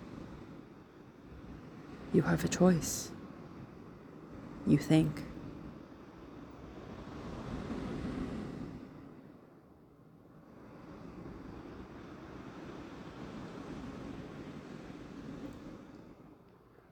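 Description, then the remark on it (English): Soft ocean waves wash in and recede in slow, broad surges, a steady rushing hiss rising and falling. A voice speaks briefly over the water near the start. “You listen to the waves.”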